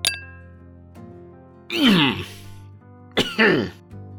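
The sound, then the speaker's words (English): A faint glassy clink, then two rough, hacking coughs about a second and a half apart, fairly loud, as a man sputters after taking a harsh drink in a bar. “He coughs up a bit.”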